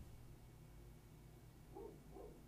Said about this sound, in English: Also, really happy that the dog upstairs is barking. I hate that dog. Yeah, let's give it a sec.